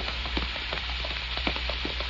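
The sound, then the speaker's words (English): Steady rain hisses down at night, with scattered drops pattering and spattering on a hard surface throughout, at a moderate, even level with no voices. “Darkness and rain covered their trail as they went down into the flatland below, searching for a fugitive.”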